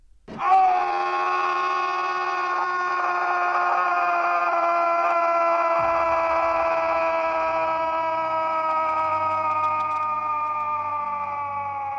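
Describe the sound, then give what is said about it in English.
A man lets out one long, loud, unbroken scream that holds steady for several seconds and slowly sinks in pitch as it drags on, with nothing else around it. “Then came …'s scream.”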